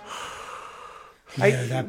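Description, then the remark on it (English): A person imitates the heavy, menacing breathing of a villain character, Darth Vader: a long, raspy inhale followed by a louder, husky exhale, heard on its own. “A creepy way to go about like a character is just that breathing, that heavy breathing.”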